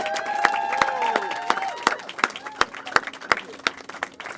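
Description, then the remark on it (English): An audience claps at a moderate, steady pace, the sharp individual claps standing out rather than blending into a roar, while voices call out and cheer over the first couple of seconds, giving a round of applause to two people. “And let's give these two a round of applause, right?”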